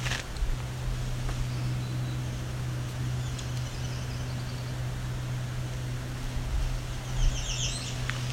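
A rapid, high-pitched American Redstart fast song rings out briefly, a quick series of thin notes over a steady background hiss and a low hum.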